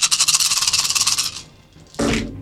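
A handful of sixteen dice, ten ten-sided and six six-sided, rattles in quick, rhythmic shakes for over a second, goes quiet briefly, then tumbles out in one loud, sharp clatter. No one speaks.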